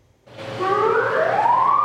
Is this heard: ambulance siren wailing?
yes